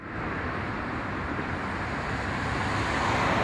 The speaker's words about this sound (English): And we've got some traffic. If I'm not mistaken, that's the A16.